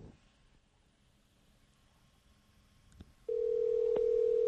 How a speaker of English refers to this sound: That's a good sign we can hear a ringtone. Or whatever that's called, dial tone. That's not a dial tone. What is that called? It's not called a ringtone.